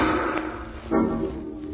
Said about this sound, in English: Margot and Lamont are in the home of the wealthy actor Hugo Zara, owner of the fabulous Ruby of Carval, when suddenly from upstairs they hear the sound of a gunshot.